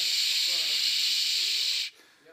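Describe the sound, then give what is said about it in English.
A person makes a steady, breathy "shh" hiss imitating white noise, holding it evenly for almost two seconds before it cuts off abruptly into quiet. “Shh, that's white noise.”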